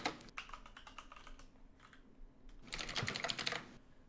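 Rapid clicking of keys on a computer keyboard as someone looks up a game's playtime on the How Long to Beat website, irregular bursts of typing that pause briefly and then pick up again in a denser flurry, with no talking.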